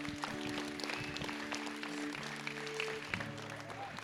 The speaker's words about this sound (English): Let's give Jesus a huge hand clap today.